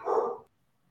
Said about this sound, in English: Yeah, I apologize. I have dogs that are supposed to be silenced here, but they obviously haven't read Dale Carnegie